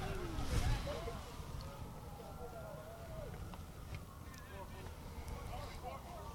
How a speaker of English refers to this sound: A lot of police cars around the Tech campus here, making some noise.